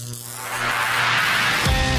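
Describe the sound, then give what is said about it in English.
An old vacuum tube radio warms up as its tubes heat: a steady low electrical hum with a hiss of static that gradually swells louder over two seconds, with no voices. “Stand by. The vacuum tubes are warming up.”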